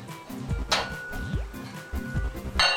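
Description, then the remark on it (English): A metal lid is set onto a pot of cholent stew with potatoes and water, left to cook for hours, giving a few bright clinks and a scrape over a low background hum. “Place the cover on”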